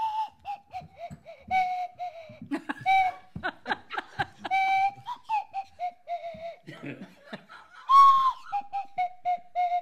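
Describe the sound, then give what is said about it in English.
A swanee slide whistle plays a wobbly tune as the second song for a team in a game, its pitch gliding and bending between notes, with bursts of laughter and chuckling breaking in alongside the melody. “Okay, on the Swanee Whistle, we have song two.”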